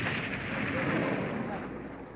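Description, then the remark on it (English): A loud, sustained explosive roar rumbles for a couple of seconds, broad and dense like a blast or burst of fire, holding steady before tapering slightly at the end: an explosion on a miniature model set, triggered by a primitive mechanism to depict an attack by planes. “To effect attacks on the model by the rebel planes, explosions are sometimes triggered by primitive mechanisms.”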